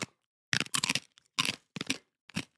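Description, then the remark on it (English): Several loud crunching bites of a crisp snack, each a dry crackly burst separated by brief pauses, with no talking. “Let's crunch. The crunch test.”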